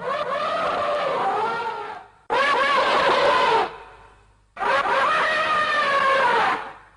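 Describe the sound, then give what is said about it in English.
An aquatic dinosaur creature's roar made from sped-up, modified elephant trumpeting: three loud, shrill, screeching cries with wavering pitch, each lasting one to two seconds and separated by brief pauses, with no talking. “And so that roar is it's actually a sped up modified version of elephant trumpeting”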